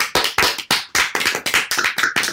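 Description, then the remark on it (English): A short round of applause: a few hands clapping in quick, slightly uneven sharp claps, loud and crisp for a couple of seconds, with no talking. “Should we give it a round of applause? Like, round of applause.”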